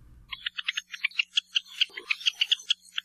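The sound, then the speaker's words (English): Java sparrow calls from a recording in the library of the Cornell Lab of Ornithology: a rapid, steady run of short, high chirping notes, repeated dozens of times with no voices. A brief low rumble sits under the first half second. “But we've also got their lovely calls for you, thanks to the Mokulei Library at the Cornell Lab of Ornithology.”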